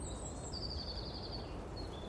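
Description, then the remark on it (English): High, thin birdsong whistles in a forest drift over a steady rush of wind blowing through the trees, sustained, with no voices present. “As you walk through a forest, you hear birds singing and wind blowing through the trees.”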